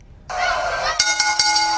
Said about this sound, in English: But I do have a referee bell sound. Ooh, you've come prepared. I have come prepared. Mm-hmm. So if I need to use this, right, I will.